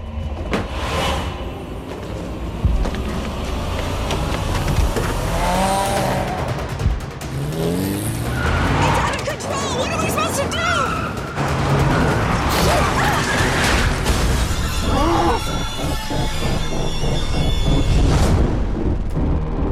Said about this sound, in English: But also, I wanted to have a car chase movie, like a hitchhiker or a car chase, not just like the vehicle itself, but the actual chase.